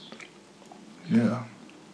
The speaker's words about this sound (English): Last thing I'm going to mention that I'm grateful for, and it's kind of like a need because you may have picked it up on the microphone and I'm munching on fruit.